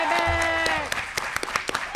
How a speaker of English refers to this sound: Thank you. Can we get a round of applause for AK and Beck?